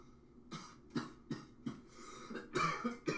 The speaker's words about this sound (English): No worries, I just coughed and I'm the seasoned vet. I smoke every day.